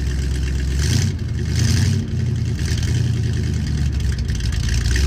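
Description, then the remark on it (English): A car engine idles with a steady low rumble, then revs in several short surges, rising and falling in pitch. The engine sounds fairly loud, with no voices over it. “What's the name of this car?”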